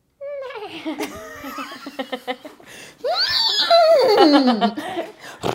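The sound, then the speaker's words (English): A person does a voice imitation of a horse neigh: a loud, wavering, high whinny that rises and trembles, then slides downward, with bursts of laughter around it. “The way I just neighed.”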